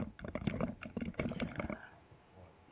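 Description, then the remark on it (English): A deck of cards being shuffled: a rapid, fluttering burst of papery clicks for a second or two, then quieter rustling handling noise. No one speaks. “And I just realized I'm going to need two hands to shuffle.”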